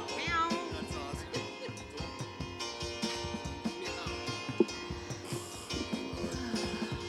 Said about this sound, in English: Trying to mask a meow, meow.